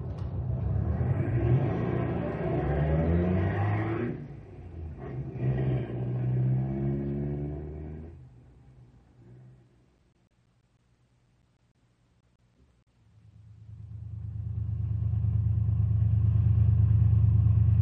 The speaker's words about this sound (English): Sounds like they're out to warm up their cars, not burn them up.